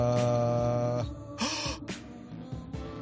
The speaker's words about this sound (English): Hold on. Is he? No, hold on. A lot of gasping going on.